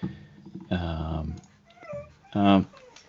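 A dog getting up whimpers in two or three short, whiny bursts with brief pauses between them, the last cry loudest, over quiet.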